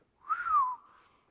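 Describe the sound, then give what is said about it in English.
A single human whistle rises quickly, then slides downward in a long descending glide that fades off, sounding like an amazed, impressed whistle with no talking. “And there, one look at a cast-off burial shroud has the disciple whistling with amazement.”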